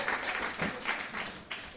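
A crowd applauds steadily, many hands clapping in a dense, bright wash of sound that holds at an even level with slight swells throughout, and no voices stand out.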